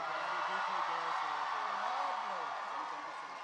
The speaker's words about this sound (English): Another round of applause for these guys. And another round of applause for Mr. David Tennant.